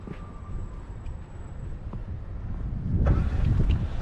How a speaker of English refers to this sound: Yeah, there's a plow on the other side of the street over there, and there's a plow right beside me too.